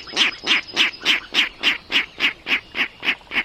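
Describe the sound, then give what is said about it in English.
A Virginia rail calls from a marsh in spring, giving a steady run of about a dozen harsh, grunting calls, evenly spaced and fairly loud, with no voices present. “Now there's a comical sound coming from the marsh. It's a Virginia rail, unseen but hardly unheard, ringing in the new season.”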